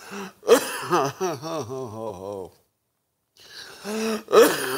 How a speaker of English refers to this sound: Let me cough it out today. Sorry about that.